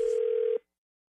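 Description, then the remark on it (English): A single burst of an outgoing call's ringing tone, placed to a new youth sports referee: a loud, steady, mid-pitched electronic hum lasting about half a second before cutting off abruptly into silence. “You'll find out in your phone tap right now. It's another phone tap.”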